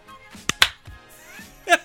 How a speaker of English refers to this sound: Yep, clap it up. One, two, three.